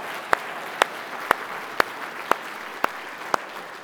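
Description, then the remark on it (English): An audience applauds for God in a steady hiss of many hands, with sharp, evenly spaced claps standing out about twice a second. No one speaks over it. “Would you give God a round of applause?”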